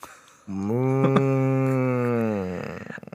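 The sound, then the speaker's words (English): A person imitates a cow with one long, steady, low moo lasting about two seconds, loud, tapering off at the end. “I'm gonna like a cow. Yeah, beef.”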